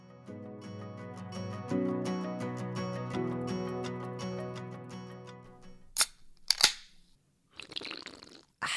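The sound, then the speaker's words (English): Several seconds of steady tonal, music-like notes, then a couple of sharp clicks and a loud, noisy, gurgling slurp of Olipop soda near the end, with no one talking. “Didn't mean to slurp it down that hard.”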